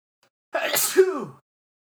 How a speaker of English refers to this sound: Sorry, I got to sneeze.